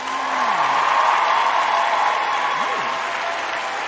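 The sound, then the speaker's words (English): A stadium crowd applause sound effect: a steady, dense wash of clapping like a whole stadium, loud and sustained throughout, with faint scattered cheers and a brief whistle rising underneath. “That's some different hand claps. Yeah, a little more powerful. Sound, yeah, like a whole stadium.”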